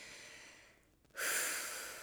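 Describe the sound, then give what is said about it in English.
A deep inhale, breathy: a steady airy draw, a brief lull, then a louder rush of breath that swells and slowly tapers off. No one speaks. “breathing that in.”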